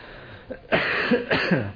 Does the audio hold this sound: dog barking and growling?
no